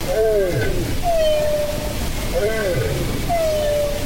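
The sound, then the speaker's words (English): Bowhead whale two-tone song: clear, drawn-out descending tonal calls repeating about every second or two, alternating pitches, heard over a constant low underwater rumble. “So here's another one of the bowhead whales doing a sort of two-tone song.”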